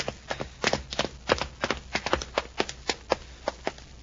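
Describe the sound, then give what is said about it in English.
Footsteps on basement stairs: a steady run of sharp, hollow thuds, roughly four per second, moderately loud and even in rhythm, with no voices over them. “I hear the stairs, Happy.”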